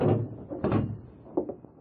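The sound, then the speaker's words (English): A heavy jail cell door is shut by a sheriff on a judge inside the cell, closing with a solid clank, followed by a few lighter metallic rattles and clicks as it settles and latches. There is no talking. “Go right into the cell, Judge. I'll have to close the door on you.”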